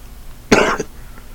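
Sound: coughing and throat clearing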